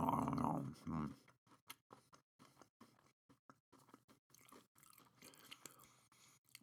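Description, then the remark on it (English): Crunchy chewing of the last bite of a cinnamon roll: a brief muffled burst, then a steady run of sharp, crackling crunches every fraction of a second, fairly quiet. “I'm gonna really crunch this last bite up.”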